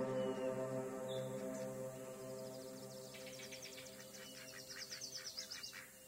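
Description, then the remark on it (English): Ducks call from a nearby pond, their honking tones holding steady while a quick run of higher chirping calls starts midway and ends in a fast, pulsing burst. “Edward could hear the ducks on the pond nearby.”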